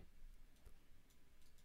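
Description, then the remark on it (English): A handful of faint, irregular clacks from a clacky mechanical keyboard being typed on to search for news on Google, spaced unevenly over a quiet background with no talking. “I'm going to type in big time with my clacky keyboard.”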